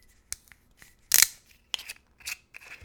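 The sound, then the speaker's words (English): A metal screw cap is twisted off a 1-liter bottle of 24% alcohol liquor: a few small ticks, then a loud crackling snap as the seal breaks, followed by several lighter metallic clicks and scrapes. No one speaks. “So let's crack it open.”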